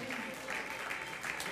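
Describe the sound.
An audience at a church service claps their hands in praise to God in a dense, steady wash of applause, with indistinct voices mingled underneath.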